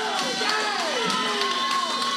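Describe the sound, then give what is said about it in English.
A wrestling arena crowd cheers loudly and steadily during a match between the champion Kenny Bengal and Timothy Zbysko, a dense wall of noise with individual shouts and whoops rising and falling through it, continuous throughout. “And the champion knows how to electrify this crowd.”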